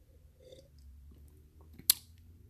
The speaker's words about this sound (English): Just give me 1 second. Let me take another sip of this Fruit Punch Crystal Light. Hold on.